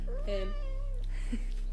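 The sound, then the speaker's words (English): A cat lets out one drawn-out meow that rises and then trails off, over a steady low background hum with no one talking. “sorry, cat again.”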